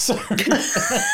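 A quick cough and a sneeze close together, both brief, near and fairly loud, with a faint background hiss and no talking.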